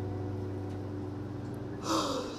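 a person yawning

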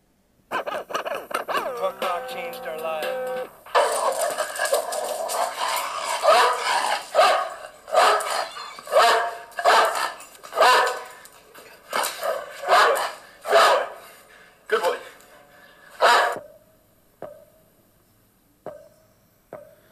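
dogs barking

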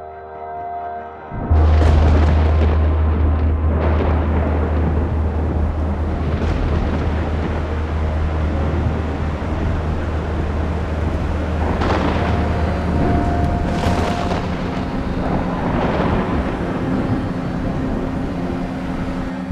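rolling thunder

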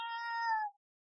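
cat meowing in background

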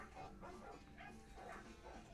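dogs barking

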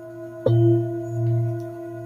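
tibetan singing bowl ringing

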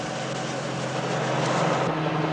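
helicopter engine

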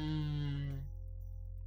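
fart into the microphone

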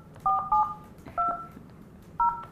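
telephone keypad dialing tones

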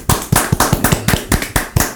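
applause

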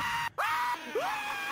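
man screaming loudly

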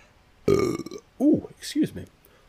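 burp

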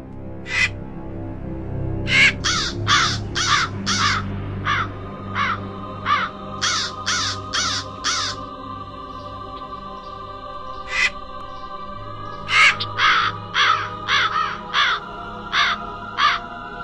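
crow cawing

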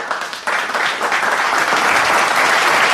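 applause

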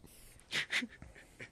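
dog panting

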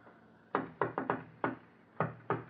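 knocking on a door

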